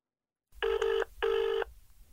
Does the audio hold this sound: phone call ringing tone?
yes